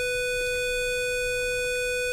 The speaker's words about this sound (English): Oh, that's our bell, y'all.